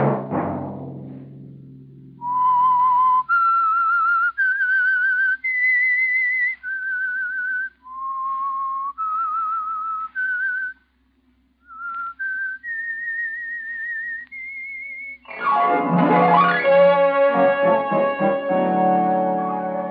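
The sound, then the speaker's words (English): The whistled theme melody of the radio show The Whistler: a slow run of clear, sustained notes stepping up and down over a low steady hum, then a loud orchestral chord swells in to finish. “Next Monday at 9 o'clock, the Whistler will bring you another strange tale.”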